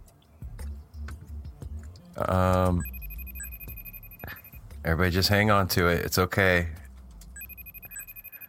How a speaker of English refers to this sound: I know it's loud. It's not that bad. It's a loud beep. Really, it won't be loud like that when they answer, hopefully.